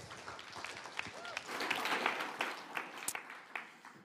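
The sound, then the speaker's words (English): A crowd in Saskatoon applauds with dense, steady clapping that swells in the middle and tapers slightly toward the end, with scattered sharper claps standing out from the wash, welcoming a guest who is about to preach. “Give Joel a big round of applause.”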